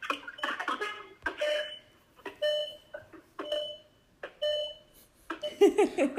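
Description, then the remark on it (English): A series of about five or six electronic beeping tones, each lasting under a second and separated by short pauses, like a phone line going dead. Fairly loud and clear, with no talking. “The phone went dead and the refrigerator went off?”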